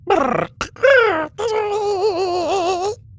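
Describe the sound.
A voice fakes snoring: two short grunting snorts, then a long, wavering, drawn-out groan that holds for over a second before stopping abruptly.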